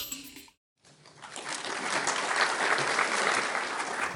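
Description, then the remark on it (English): An audience breaks into applause for filmmakers after a brief silence, the clapping building quickly into a dense, steady wash of many hands that holds for several seconds, with no voices rising above it. “Another round of applause for our lovely filmmakers,”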